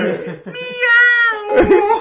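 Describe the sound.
A person's voice mimics a cat, drawing out a long, strained meow, then a second rougher yowl right after, loud with nothing else behind it.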